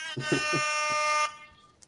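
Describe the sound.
A single sustained air horn blast from a phone app, loud and brassy with a buzzing harmonic tone, lasting about a second before cutting off, with a voice faintly underneath at the start.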